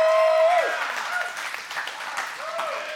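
An audience applauds steadily for a few seconds, a dense wash of many hands clapping in a large room, with a brief whoop or tonal cry rising above it near the start and end.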